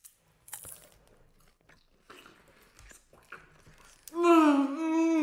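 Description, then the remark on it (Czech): A crunchy snack is bitten and chewed in a series of irregular, moderately quiet crackling crunches, followed by a loud, drawn-out voiced "mmm" or "ohh" of enjoyment. “Oh, takovou dobrotu jsem v životě nejedl.”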